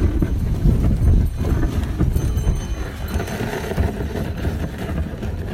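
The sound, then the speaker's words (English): One horse pulls an open sleigh, trotting past an old barn and through a wooden fence into snow fields. Its hooves clip-clop steadily over a continuous low rumble of runners and movement, a rhythmic trotting that carries on throughout without any voices. “It's our son, little son's first sleigh ride. Open. One horse open sleigh ride.”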